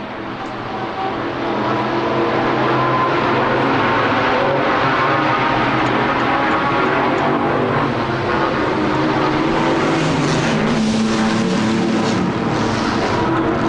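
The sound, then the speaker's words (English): Race cars roar around a circuit whose furthest point is nearly 2 miles away, heard from the back of the pit area, in a steady, loud wall of engine noise, several engines overlapping and revving without a break, with no one talking. “In fact, I'm standing just at the back of the pit area, and I can hear the cars clearly all the way around the circuit, even though the furthest point is nearly 2 miles away.”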